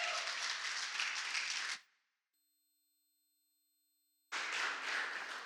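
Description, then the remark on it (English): Loud, dense applause from the audience at Phoenix Bible Church, welcoming a speaker up, fills the opening seconds, cuts off into near silence with a faint steady hum of tones, then a second burst of clapping surges back just as strongly. “Would you give him a warm clap as he comes up here?”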